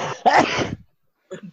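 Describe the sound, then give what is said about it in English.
A short sharp intake of breath leads into one loud, forceful sneeze, followed by a moment of silence and a faint, brief sniff or murmur. “Sneezing get him away from my screen.”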